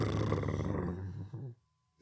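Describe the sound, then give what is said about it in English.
A voice imitates a drum roll with a low, fluttering lip trill that rumbles steadily for about a second and a half, then sputters out abruptly into silence. “That was the worst drum roll I've ever heard. My lips turned stopped.”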